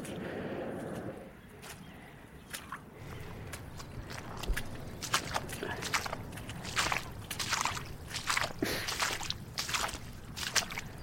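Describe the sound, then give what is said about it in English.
Footsteps wade through shallow water pooling in an arable field, each step a wet squelch and slosh in a steady, unhurried rhythm, moderately loud, with no voices. “In fact, there's a lot of water here, even in the arable field above me. It's pooling, and it's going to be quite a wading job to get through this next section.”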